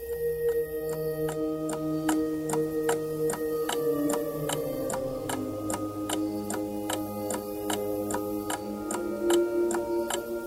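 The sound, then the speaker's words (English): A clock ticks steadily, roughly two crisp ticks per second, over a sustained low tonal drone with shifting pitches. The ticking stays clear and even throughout, with no voices. “Finally, the clock strikes 11.”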